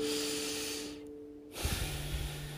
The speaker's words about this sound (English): Take three or four very deep cleansing breaths. Even science will tell you that we as a society do not breathe deeply enough.